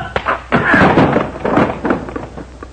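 A scuffle of heavy thuds and bumps as a body is thrown with judo and slammed down, with several dull impacts and shuffling spread over a few seconds.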